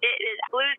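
A short burst of a voice speaking over a telephone line, thin and narrow-band with no deep bass or crisp highs, the tinny sound of a caller on the phone from Palm Springs.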